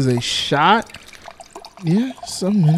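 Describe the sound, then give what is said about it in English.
A cocktail is poured from a shaker into a glass, a soft trickling splash that runs beneath loud voices talking over it. “Put it in the shaker. Give it a nice little pour.”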